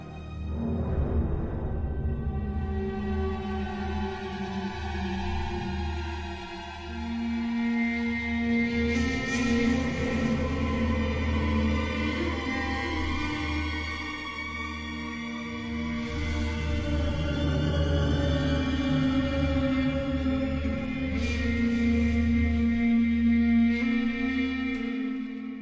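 Eerie, echoing orchestral music swells steadily with long sustained tones over a deep low drone, fairly loud and unbroken throughout, with no voices.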